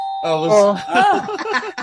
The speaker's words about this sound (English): We got a doorbell.